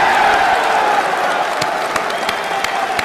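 A large crowd applauds and cheers loudly and steadily for several seconds, a dense wash of clapping with voices whooping underneath and occasional sharper claps standing out. The audience is cheering for Russia, for Putin invading a sovereign country.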